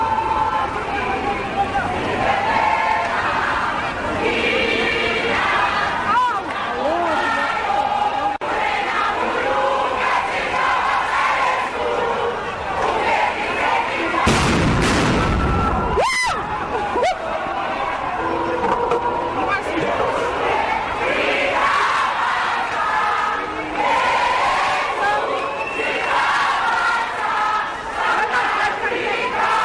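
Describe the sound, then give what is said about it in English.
A large crowd of protesting students at the parliamentary precinct chants "fees must fall" and "Blade must fall" together continuously and loudly, their voices blending into a dense roar, with a brief burst of harsh noise cutting through partway. “students who chanted Blade must fall, in addition to the earlier chants of fees must fall.”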